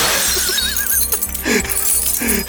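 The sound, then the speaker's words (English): A drinking glass shatters loudly against a mirror, a bright crash followed by tinkling shards, heard alone over a low rumbling background. “The drinking glass. Oh, I'll fix you, Mr. Reflection.”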